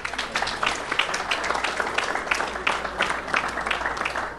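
A crowd applauds a man being introduced, many hands clapping in a dense, even patter at moderate volume for several seconds with no voices over it.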